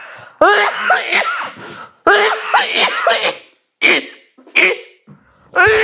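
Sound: bad coughing fit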